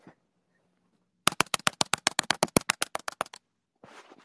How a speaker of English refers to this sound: You want to listen to my nice keyboard? Yeah. We have the exact same keyboard.